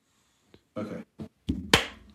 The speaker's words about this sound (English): So wait, is it 3, 2, 1? We should be clapping at the same time.